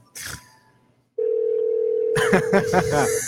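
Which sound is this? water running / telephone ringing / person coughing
telephone ringing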